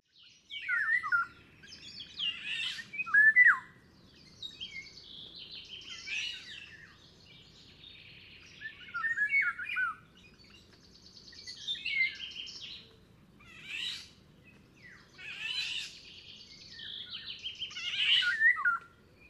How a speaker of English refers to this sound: They can usually be heard from quite a distance. Experts say that even the layperson can hear and remember a golden oriole's call for life, upon hearing it only once or twice.